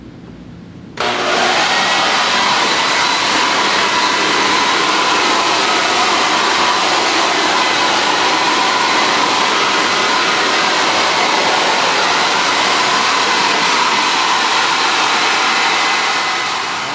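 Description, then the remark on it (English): A leaf blower, used to blow over a finished mount so it can dry, starts abruptly after a second and roars at a steady, loud pitch, a broad rushing whine of air and motor that holds constant to the end. “We're gonna take this leaf blower and blow him up good, and he'll be ready to go.”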